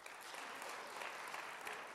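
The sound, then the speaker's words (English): A crowd claps steadily to vote that barbecue is pork, a dense, even wash of many hands clapping at once with no pauses, holding at a moderate, constant loudness throughout. “those of you who believe that barbecue is pork will do so on the second”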